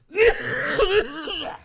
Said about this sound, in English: I'm gonna cough for everybody. Hold on. That feels better. I'll give you a good one too.